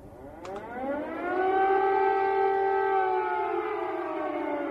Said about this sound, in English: That sound of air raid sirens. Well, this seems to be the worst night yet in the country of Ukraine, as air raid sirens are blaring in more than 20 cities in the country